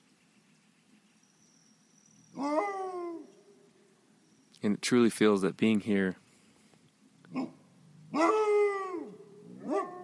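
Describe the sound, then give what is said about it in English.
Wolves howl in a canyon in long, wavering tones that slide down and hold steady, two separate howls a few seconds apart, with a person speaking briefly between them against a quiet outdoor backdrop. “When the wolves howl, there's nothing like it, and it encompasses the entire canyon.”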